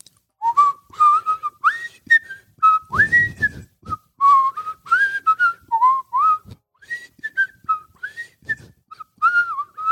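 A jaunty tune whistled solo, the theme of the Andy Griffith Show, bright bouncing notes in steady phrases that carry on throughout, with no talking.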